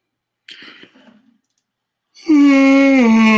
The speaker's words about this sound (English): That was a real life yawn, people. That wasn't for fake.